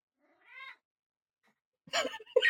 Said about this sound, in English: Hello, kitty. Meow.